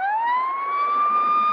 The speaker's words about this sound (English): Turn on your sirens and turn them off so they could hear through the cell phone where they were on the fly to triangulate exactly where this is and where the police cars were.